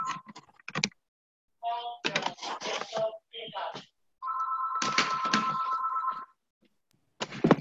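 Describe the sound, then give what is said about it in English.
A phone rings with a steady electronic tone for about two seconds over a tinny open line on a group call where a few participants left their mute off, surrounded by bursts of keyboard clatter and muffled background voices. “There are a couple folks with their mute off and phones ringing.”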